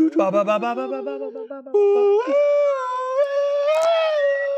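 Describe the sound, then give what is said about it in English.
A person imitates monkey noises: a run of quick, choppy hooting calls that glide into a long, rising howl-like wail, loud with no other sounds. “I mean, yeah, you start making the sauce monkey noises.”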